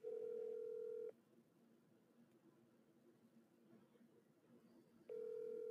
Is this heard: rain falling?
no